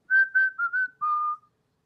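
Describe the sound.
A person whistles a short, bright tune: four quick notes followed by one longer, slightly lower held note, with no talking.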